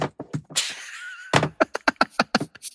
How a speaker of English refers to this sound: Wait, I'm going to knock something over. Can you hear this?